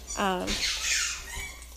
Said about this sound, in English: So that's just a little bit I wanted to kind of talk with you guys about, as my dog is squeaking up and I'm trying to make breakfast.